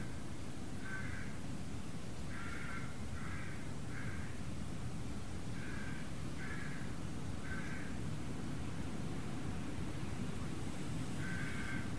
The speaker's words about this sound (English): One squawk of the rooks at a time.